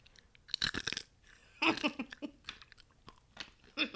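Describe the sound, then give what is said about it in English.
Crunching of a dry, hard dried soybean snack being eaten, with a sharp loud bite near the start followed by irregular softer chewing crunches that continue to the end. “You get one good crunch, and then your mouth is dry as heck.”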